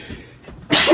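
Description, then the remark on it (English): A single sharp sneeze bursts out loudly after a brief quiet inhale, its noisy blast spreading across the whole range and holding to the end. “Bless you.”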